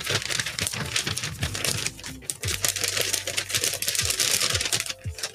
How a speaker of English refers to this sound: Hold up. Let me just grab the paper over here.